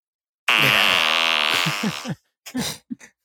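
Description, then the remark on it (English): A long, loud, buzzy fart noise, seemingly coming from inside Zencaster, drags on for under two seconds, then breaks into a few short sputtering bursts. No one talks over it. “It just seems like there's a fart inside of Zencaster.”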